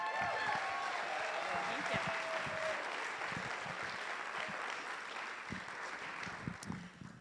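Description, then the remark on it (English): A sustained round of audience applause welcoming a speaker at a talk, dense clapping from a crowd filling the room at steady volume for several seconds, with faint voices and a few whoops mixed in before it begins to taper. “Please, a round of applause.”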